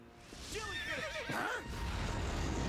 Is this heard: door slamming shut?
no